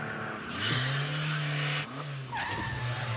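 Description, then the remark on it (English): Peter drives his car after seeing a sign that the McRib is back: the engine roars while the tires let out a long, loud screech, then a second squealing skid follows as the vehicle swerves; no voices are heard. “Peter's driving his car. He sees a sign.”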